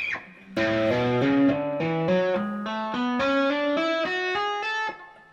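Distorted electric guitar playing the major scale as hammer-on notes, roughly a dozen climbing steadily in pitch with an even rhythm, each note ringing and buzzing into the next, with no talking.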